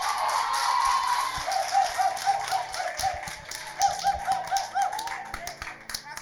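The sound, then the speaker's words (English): An audience breaks into clapping, a dense, uneven patter of many hands that carries on for several seconds over a steady, busy background noise. “Please, you clap for Soa.”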